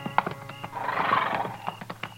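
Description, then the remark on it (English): A horse neighs in a long, rising whinny while hooves clip-clop in uneven steps, with a few sharp knocks at the start and end. “This man's got horses.”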